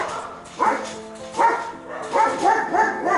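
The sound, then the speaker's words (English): Two dogs, a household dog and the neighbour's dog, bark back and forth at each other in a steady series of loud, overlapping barks, one answering the other, with a faint yip or whimper between the outbursts. “They are barking with each other, the neighbor's dog and our dog.”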